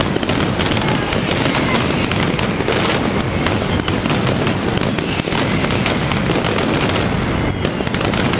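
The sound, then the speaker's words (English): Deafening fireworks explosions at a daily 2 o'clock display in a square attended by about 120,000 to 130,000 people crackle and bang in a relentless, rapid barrage, a dense continuous roar of loud bursts that never lets up, with the crowd's voices buried underneath. “You know, I've been to fireworks displays in lots of different places, but this is on another level. It's so, so loud.”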